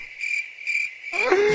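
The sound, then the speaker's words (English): Crickets chirp steadily in a continuous high trill, clear, with a few other faint noises coming in near the end; a cricket sound effect played on a live show. “The crickets, it was supposed to be that right there.”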